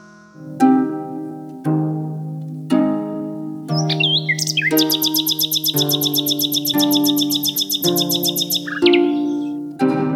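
birdsong

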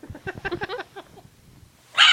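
dog barking

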